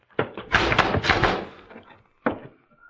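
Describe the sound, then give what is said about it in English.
A locked door is crashed open with a heavy thud, then a loud, rattling crash that trails off, followed by one more sharp bang after a short pause. No one speaks. “Stand clear of the door. I'm going to crash it.”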